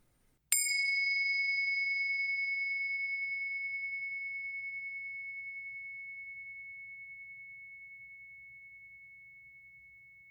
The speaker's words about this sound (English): First, let's settle in together with the sound of the bells.